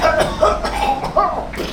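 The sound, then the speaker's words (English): A run of several harsh coughs in quick succession, each a short raspy burst with brief gaps between them, fairly loud and with no talking. “Having a cough as you're trying to move surreptitiously through a room, do not get shot.”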